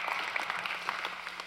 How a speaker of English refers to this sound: Will you guys give another round of applause